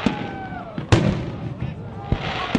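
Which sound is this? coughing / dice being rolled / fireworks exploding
fireworks exploding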